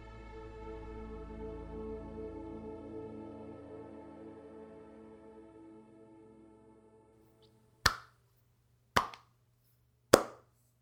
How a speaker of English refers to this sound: Slow clap. Slow golf clap.